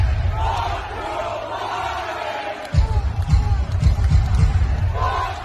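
A huge crowd chants at a game in a dense, continuous wash of voices, swelling louder partway through with rhythmic, pulsing surges like a stadium chant.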